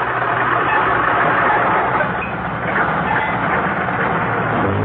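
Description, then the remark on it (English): Jack Benny's old car engine sputters and rattles in a continuous, rough stream of noise, loud, with uneven popping and clattering throughout and no voices. “That's what my car thinks of you, Alan.”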